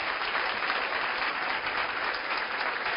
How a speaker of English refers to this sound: God bless you, sister. A round of applause for our sister.